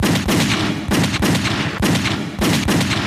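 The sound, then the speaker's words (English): A burst of handgun fire, Cutter's gun shooting through a house door under streetlights: five or six loud, sharp shots at an uneven pace over about three seconds, each crack blurring into a heavy, roaring tail, with no voices. “Cutter's gun erupted.”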